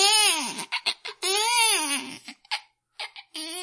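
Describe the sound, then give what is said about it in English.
A man imitates a baby crying: long, wavering wails rising and falling in pitch, broken by short gasping sobs and pauses, fairly loud and with no other talking. “I do a baby scream. It's a very, very convincing now, baby cry.”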